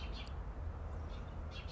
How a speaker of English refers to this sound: It's another nice day out, and I think if you listen, you could probably hear the birds.